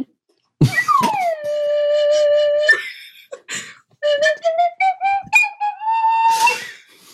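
A slide whistle swoops down and holds a steady note, then a wavering singing voice joins in over rising whistle tones, with breathy bursts scattered between.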